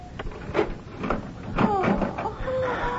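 A key clicks and rattles in the lock of a locked room door with a few sharp metallic clunks, then the door creaks open, with faint murmuring voices in the background.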